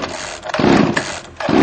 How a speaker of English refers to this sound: He pulls the cord on the chainsaw, but it doesn't start. He pulls it again. Nothing. He turns around, a little embarrassed, and gives the chainsaw another few pulls.